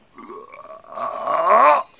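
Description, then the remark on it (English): A voice imitates a frog's loud croak echoing over the water of a swamp: a drawn-out, gargling, throaty sound lasting about two seconds, starting low and swelling louder with a rising, rattling pitch before cutting off. “Frog's loud croak echoed over the water.”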